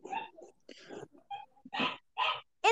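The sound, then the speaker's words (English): A dog whines and yelps in short, high-pitched bursts, a few close together and growing louder toward the end, with bits of human voice mixed in. “What is going on with that dog?”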